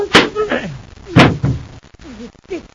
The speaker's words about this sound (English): Striking an old man.